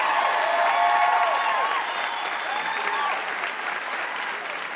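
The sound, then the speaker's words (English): An audience claps steadily in a loud, sustained round of applause for VIP guest Barney Frank, with a few whoops and cheers mixed in, holding strong throughout before easing slightly at the end. “Another huge round of applause for our VIP, Barney Frank.”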